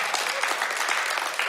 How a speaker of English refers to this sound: You can clap a little more from that if you want to, because that's some good news today.